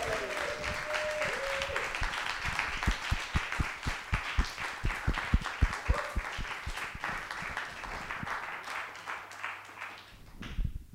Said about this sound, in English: Got to keep the round of applause going until he sat down, guys. Come on.